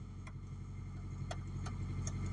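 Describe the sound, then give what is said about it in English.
A pickup truck engine, started with a button while the foot is on the brake, idles with a steady, low, throaty rumble from inside the cab on a freezing day, broken by a few soft, sharp clicks. No one speaks. “And it's got a nice beefy motory sound to it.”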